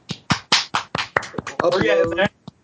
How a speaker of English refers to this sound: Applause sound. Thank you very much. Haven't gotten it yet, so hold the applause.